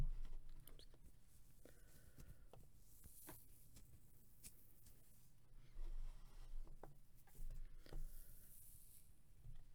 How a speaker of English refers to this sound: I love the soft thumps that the kinetic sound makes when it falls.